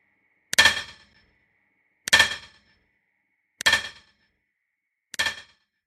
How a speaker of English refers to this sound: They say if you go to that old Big Bend tunnel today and you listen real close, you can still hear the echoes of John Henry's great pounding hammer, fighting day in and day out against the cold stone heart of the mountain.